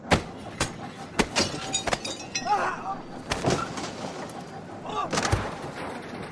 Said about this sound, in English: Let's have some sort of mashup of train noises and fighting.